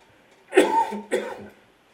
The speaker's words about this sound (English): Excuse me. That's not a COVID cough, by the way.